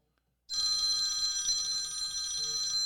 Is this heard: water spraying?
no